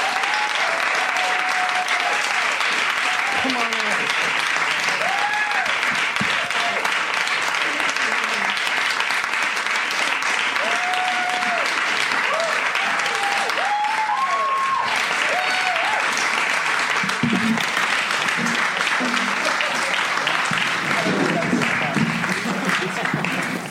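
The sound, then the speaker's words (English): A large crowd applauds the panelists of the Writer's Panel with Ben Blacker steadily for about twenty seconds, a dense, even roar of clapping mixed with scattered whoops and cheers rising above it. “Please give a round of applause to all of our panelists.”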